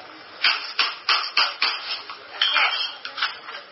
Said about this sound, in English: She broke some fresh ice, bro. She broke some fresh ice off with a frying pan skillet, or a flipper.